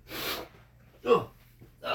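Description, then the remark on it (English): Three quick, breathy nasal sniffles in a row from a supercut of repeated sniffles, fairly loud, separated by brief pauses, one of them carrying a slight vocal squeak. “I hate the sniffle supercut.”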